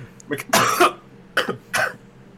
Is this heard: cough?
yes